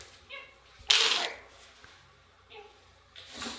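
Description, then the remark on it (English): A dog named Rex gnaws on a rubber rope toy: one loud, scratchy burst of chewing followed by softer scattered gnawing and snuffling sounds. “it's cute that she's trying to gnaw the thing to death”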